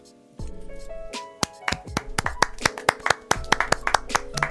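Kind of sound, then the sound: crowd, round of applause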